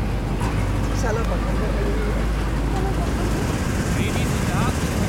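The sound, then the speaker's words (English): A bus carrying a survey team drives out into the field, its engine rumbling loudly and steadily throughout, with faint murmuring voices mixed into the constant low drone. “So everybody jumps onto a bus and heads out into the field.”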